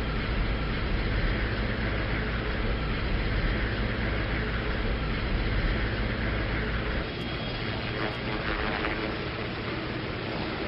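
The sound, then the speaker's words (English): President Nixon's helicopter roars overhead, passing over the fountains of the White House South Lawn and the ellipse toward the Washington Monument, a loud, steady, rumbling engine drone that fills the whole stretch, easing slightly near the end. No one speaks. “President Nixon's helicopter going over the fountains of the White House South Lawn, over the back black fence, high over the ellipse.”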